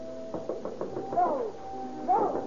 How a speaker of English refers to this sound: About 10:30 in the evening, there is another knock on the door.